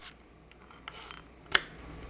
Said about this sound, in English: While the wheat is coming to a boil again, she pours toasted hazelnuts onto a cutting board to chop.